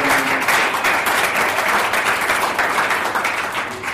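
A crowd applauds steadily, many hands clapping in a dense, even wash of sound that holds loud throughout and eases off slightly toward the end.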